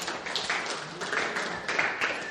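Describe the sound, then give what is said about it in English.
A crowd claps steadily, a dense wash of many hands applauding at once with no clear individual beats, holding at an even, moderate loudness for a couple of seconds. “Clap again.”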